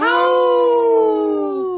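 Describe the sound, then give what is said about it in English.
A single wolf howl in a Howling for Wolves message about Minnesota wolves, a steady, loud, tonal note that holds its pitch and then slowly slides downward before fading out, with no voices around it. “As highly intelligent animals with strong social bonds, Minnesota wolves deserve to be protected and admired.”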